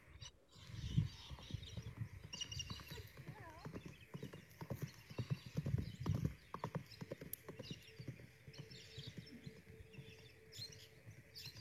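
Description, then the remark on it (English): A mare's hooves clip-clop in a steady, rhythmic walk, with a few soft whinny-like sounds and some faint background murmurs. “And she's taught me more than any other horse. So I just wanted to show you this little video of her.”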